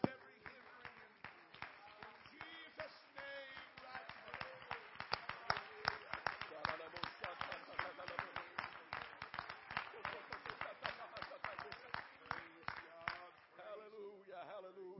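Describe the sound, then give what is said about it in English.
A crowd claps hands unto the Lord in a fast, steady rhythm for about thirteen seconds, with voices sounding underneath, before the clapping breaks off near the end. “And we clapped our hands unto the Lord tonight.”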